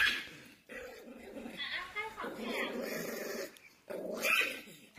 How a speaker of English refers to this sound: I don't know how the Pomeranian got on the counter. But he seems to run this house. Good lord. Can't slap him away. That's horrifying. This dog is possessed.